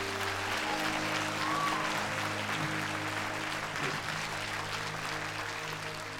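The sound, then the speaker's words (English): An audience claps steadily for several seconds as a clap offering of praise to Jesus, a dense, loud wash of applause over a low sustained hum, with no speech. “Give Jesus a clap offering of praise tonight.”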